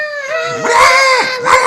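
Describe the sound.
A voice imitates a screaming goblin whose foot has been nailed to the floor with a large spike, a shrill, wavering, strained wail, harmonics sliding up and down through two short bursts over nearly two seconds, loud and catlike.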